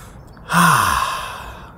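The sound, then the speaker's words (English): A single yawn: a sudden breathy intake swelling into a long, airy exhale with a low voiced tone sliding downward, then fading out. No talking. “So go about your day and do your yawnings, because people are gonna love you for it.”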